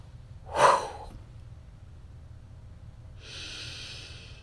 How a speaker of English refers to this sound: start exhaling slowly through your mouth to a count of eight. Repeat this process three more times for a total count of four breaths. And that is the 4-7-8 exercise.